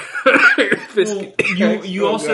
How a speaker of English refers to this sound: You can cough now.